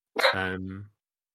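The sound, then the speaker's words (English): A single bark from a female pet dog, a short harsh onset sliding into a deep, drawn-out woof that lasts under a second and then stops, with nothing else around it. “She is barking in the background.”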